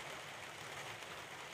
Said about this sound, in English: Starting to rain now, and I just wanted to record that little reflection.